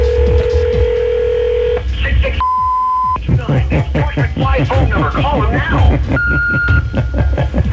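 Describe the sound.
Telephone tones as a number is dialed: a long steady tone, then a short higher beep, followed by busy, chattering voices with another brief beep near the end.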